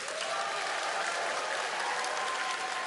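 A crowd claps and cheers steadily throughout, cheering a man on during a timed challenge; a dense, continuous wash of applause at an even level with no pauses and no distinct talking.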